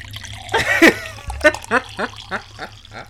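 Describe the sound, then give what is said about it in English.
Juice and water pour and splash in a few short, uneven bursts, with trickling and dribbling sounds between the louder gushes. “It's just juice and like water, because, you know, Devin's on his keto diet.”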